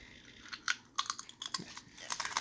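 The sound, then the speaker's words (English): Crisp, crackly crunches of someone slowly biting and chewing potato chips by a microphone, coming in uneven bursts that cluster toward the end. The crunching is fairly quiet, with no talking. “Are you eating chips in the background?”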